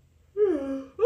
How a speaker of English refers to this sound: Why I start yawning? You do yawn when the camera come on.